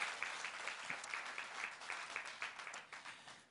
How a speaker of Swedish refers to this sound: Men välkomna hit till KCV. Och välkomna hit till Wow-konferens. En stor applåd tycker jag. Det här är härligt.